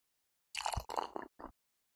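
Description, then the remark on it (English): Cheap champagne glugs and splashes into a glass in a few short, uneven bursts with a fizzy hiss, lasting about a second before stopping. “So I'm going to pour this for sound effects, but I am basically drinking cheap champagne.”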